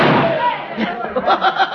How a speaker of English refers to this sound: A couple of gunshots at the feet of that sheriff's horse. A couple more back of the last member of the posse.